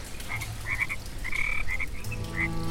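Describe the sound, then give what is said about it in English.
A dense chorus of many frogs croaking at once, their overlapping trills and chirps rising and falling in a continuous, steady wash of sound with no voices. “As you're all looking at each other and inspecting your mushrooms, you hear from above you a great rising sound as if 100 frogs are singing together.”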